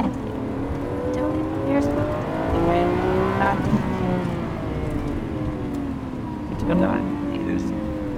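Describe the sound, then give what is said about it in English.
A powerful Lamborghini V12 sports car engine revs up and down for several seconds, its loud roar climbing and dropping in pitch with a sharp surge near the end. “Lamborghini V12 exercise day”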